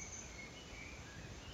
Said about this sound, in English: It's beautiful. Listen to the birds.